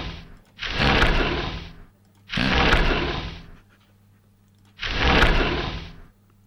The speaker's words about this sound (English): Just opening all the windows. One over here. And make sure we get a little one here. And over here. And that one there.